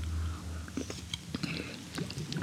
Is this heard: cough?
no